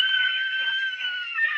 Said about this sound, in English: Oh, fuck. Third greatest scream ever.